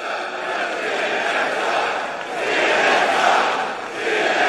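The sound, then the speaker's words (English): A large rally crowd in Ohio chants "CNN sucks" loudly in unison after the speaker rails against fake news, a dense roar of many voices that swells and dips in rhythmic waves, with no single voice standing out. “He started railing against fake news and the crowd busted out into this.”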